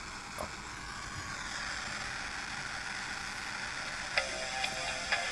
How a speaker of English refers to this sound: The VHS warming up.